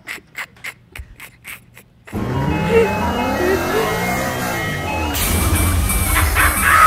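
After a few short rhythmic bursts, an ice cream truck's jingle plays loudly and steadily over a dense wash of engine and street noise, its tinny melody continuing to the end.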